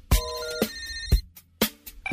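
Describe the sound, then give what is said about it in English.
A telephone rings in quick repeated bursts, bright metallic trills with sharp onsets about every half second, loud with no voices, used as a show's intro. “Telephone. The phone show.”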